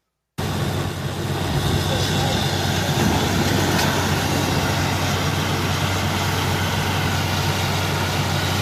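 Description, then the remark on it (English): A heavy well-drilling truck engine roars continuously as it drills for water, a loud, steady low rumble with a broad mechanical hiss that holds unchanged for several seconds. “Like, you couldn't hear it because the truck was so loud, but people were like, yeah, celebrating.”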